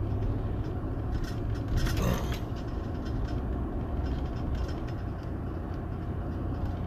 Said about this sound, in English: Here comes a tractor trailer barreling down the fucking road.